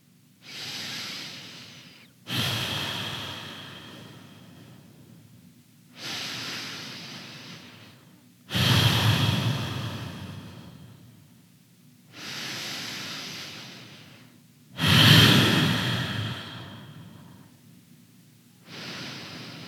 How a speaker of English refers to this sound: And that breath is an ocean breath because it sounds like those waves crashing against the ocean. Let's do five of those ocean breaths and see how you feel at the end.